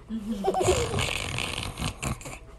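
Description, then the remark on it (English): Someone mimics a cow snoring: a voiced, moo-like start slides into a long, raspy, breathy snore, ending in a couple of short snorting bursts. “Well, it made her sleepy. And so she kind of, moo, and fell out. And she's snoring.”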